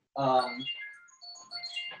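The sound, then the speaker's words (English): A phone alarm chimes in with a short electronic melody of bright, stepping tones that rings on steadily for a couple of seconds, fairly loud. “sorry, my phone alarm's going off right now.”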